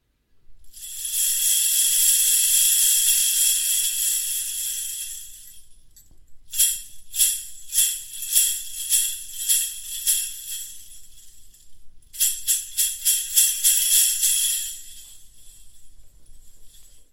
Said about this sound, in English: So that was, yeah, just these beautiful big clumps of bells. They used quite a lot. … used to use those a lot on the sort of 60s, 70s jazz. They had such a beautiful texture and sparkle and energy.